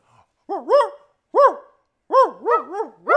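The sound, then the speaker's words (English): A person imitates a dog barking, aimed at a real dog: two loud, separate woofs, then a quick run of three or four more in a bouncy rhythm, with no other talking. “We gonna bark at the dog.”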